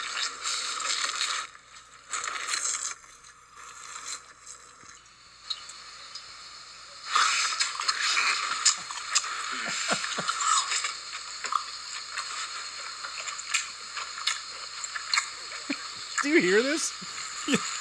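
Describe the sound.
Loud, wet chewing and crunching by a man eating at a waterfall, with squishy smacking mouth sounds, continuing in irregular bursts after a brief lull, with a voice briefly audible near the end.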